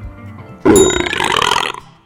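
A single loud belch erupts abruptly and rumbles on for about a second before trailing off, with quiet background before it.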